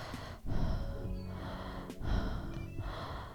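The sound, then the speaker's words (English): Heavy, congested breathing through the mouth, loud, with two long rasping inhales and exhales in a slow rhythm. No one speaks. “But yeah, did you guys miss me and my congested fucking mouth breathing ass?”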